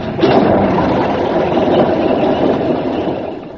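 A petrol engine is started, catches after a brief moment and settles into a loud, steady running roar with a throaty, rumbling texture that continues without a break; no one speaks.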